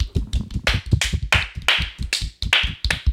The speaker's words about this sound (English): Can we get a round of applause for all our essential employees at the customer service desk?